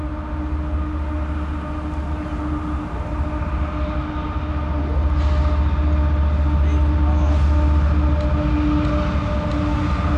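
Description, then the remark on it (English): A heavy freight train loaded with thousands of tons of coal rumbles past, a loud, continuous low roar with steady mechanical droning that swells even louder about halfway through and stays intense to the end. “We've waited here for about an hour, and here comes a freight train loaded with thousands of tons of coal.”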